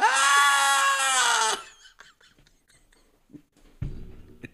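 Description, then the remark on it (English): A person lets out one loud, drawn-out, exaggerated scream imitating a sex noise, lasting about a second and a half, followed by faint breathy sounds and a brief low murmur near the end. “All I can think of is just really loud screaming.”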